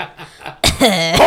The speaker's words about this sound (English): It's a tradition here. Cough to the mic.